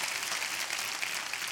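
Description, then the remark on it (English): A church audience gives God a hand clap of praise in a dense, steady burst of applause that holds at an even level for the whole moment, the many overlapping claps blurring into a continuous crackling wash. “Come on, if you believe it, give God a great hand clap of praise in here.”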